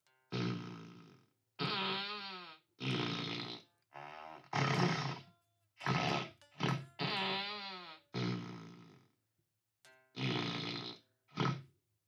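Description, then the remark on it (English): An electric guitar played through a fart-effect pedal on its dry setting, giving a series of about nine loud, buzzy, flatulent blurts with wobbling pitch that do not follow the notes played, separated by short pauses, with no talking. “Let's turn the fart pedal on.”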